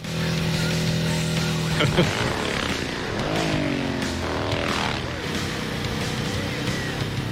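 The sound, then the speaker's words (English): A motorcycle with a racing-type engine and a dual exhaust system drones steadily, then revs up and down in a couple of sweeping pitch swells before settling back to a rumbling idle. “It has a sort of a racing engine in it compared to our production motorcycles. It has a dual exhaust system.”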